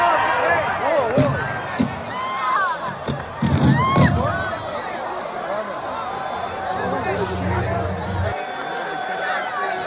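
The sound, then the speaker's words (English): A noisy crowd at a show murmurs and shouts throughout, with a few sharp thumps and bursts of low scuffling around the early seconds, like bodies colliding in a tackle, followed by overlapping voices talking. “So you'll hear a little bit of the sort of tackle and then some talking at the end.”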